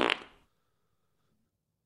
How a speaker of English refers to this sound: Yeah, this is Germany calling. I would like a Bratwurst fart, please. Oktoberfest is coming. I would like a Bratwurst fart and a potato pancake fart, please.